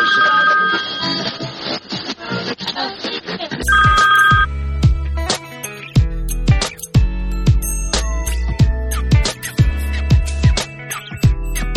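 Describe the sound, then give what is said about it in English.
A telephone rings loudly and steadily for a few seconds, gives one more short ring, then gives way to rhythmic music with heavy bass hits. No one speaks. “And I have no idea why the phone was ringing into my ear, but I bet you heard it as well.”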